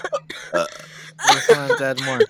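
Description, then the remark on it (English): A loud burp rumbles out in a drawn-out, croaky stretch, preceded by a few short throaty noises, with a faint steady hum in the background. “Like, everyone but me is like choking, burping, or laughing”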